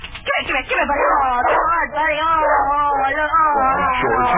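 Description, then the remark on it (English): A dog named Bunny whines and howls at the back door in long, wavering cries that rise and fall in pitch, fairly loud, carrying on almost without pause for several seconds. “You hear that? You hear that? I think Bunny's at the back door.”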